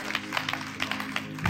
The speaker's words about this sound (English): Can we clap your hands for God?